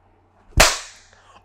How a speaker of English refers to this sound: That was nice. That was nice. We all clapped in sync. That was perfect.